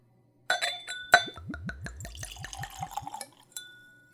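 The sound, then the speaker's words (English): Whiskey glugs from a bottle into a clean Glencairn whiskey nosing glass after a bright clink of glass on glass, the pour rising in a quick rhythmic series of gurgles, then tapering off with a faint final ring. “I'll be tasting with a clean Glencairn glass, as always. It's a whiskey nosing glass, ideal for seeing a spirit, smelling a spirit, and tasting a spirit. So let's give it a pour.”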